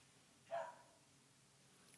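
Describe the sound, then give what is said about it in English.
One short, muffled dog bark rings out against a quiet background with no talking; a faint click follows near the end. “You know, he was barking at 10:50 p.m. last night while I was just putting my big head down to sleep.”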